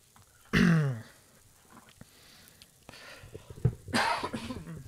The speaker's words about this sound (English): After I cough.